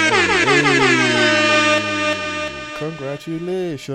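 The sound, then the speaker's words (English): A loud, sustained air horn blast blares for a couple of seconds, then cuts off as a person's voice takes over. “I give her an air horn or a bomb or something.”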